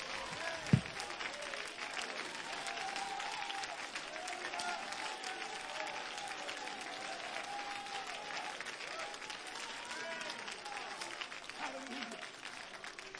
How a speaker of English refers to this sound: That's why we ought to clap our hands and give him great praise.